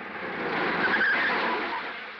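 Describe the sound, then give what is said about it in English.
A car screeches to a stop, a harsh tire squeal swelling over a rushing engine-and-road roar for about two seconds before easing off. No one speaks. “I'll stop a car, and I won't use my thumb.”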